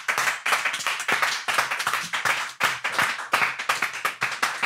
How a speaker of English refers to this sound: That was a long clap.